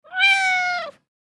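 cat meowing

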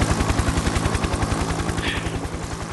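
helicopter rotor sound effect

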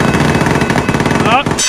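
bell sound effect

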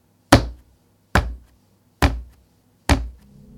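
knocking

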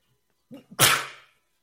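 sneeze

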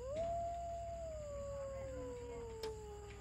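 wolves howling

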